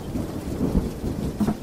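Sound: rain falling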